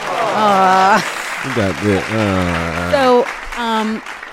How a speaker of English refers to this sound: It's almost 17 years. Wow. Yes, man. Let's clap it.